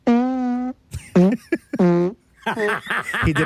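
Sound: fart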